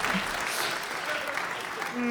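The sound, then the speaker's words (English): Steady, dense applause from a crowd for a stage robot called DeepBot fills the whole stretch, a continuous wash of clapping at moderate loudness with faint voices mixed in. “Round of applause for DeepBot.”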